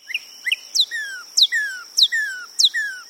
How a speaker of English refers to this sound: The cardinal, a familiar bird of central and eastern states, creates its pure whistle by producing sound in its left and right bronchial tubes simultaneously.